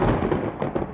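A loud clap of thunder rumbles deeply with a couple of sharper cracks near the end, filling the whole moment with no voices present.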